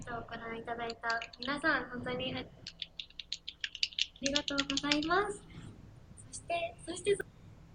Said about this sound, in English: All I heard was typing.